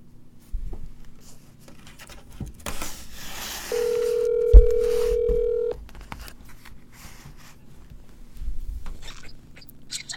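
A phone call rings out as a single steady electronic tone lasting about two seconds, surrounded by faint handling and rustling noises, with no voices.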